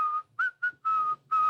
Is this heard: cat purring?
no